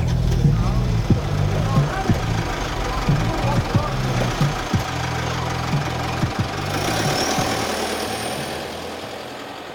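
A car trunk rattles and buzzes under loud, booming bass notes, with sharp knocking clicks repeating in a loose rhythm throughout, close and steady until the bass thins out near the end.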